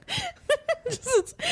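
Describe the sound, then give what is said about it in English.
A voice imitates heavy breathing: a quick run of breathy, voiced huffs and gasps with wavering pitch, moderately loud, several short bursts across about a second and a half. “So the first thing I wrote commentary wise was starts with heavy breathing.”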